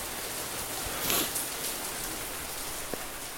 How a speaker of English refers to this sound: I'm so tired of the rain. And it stops.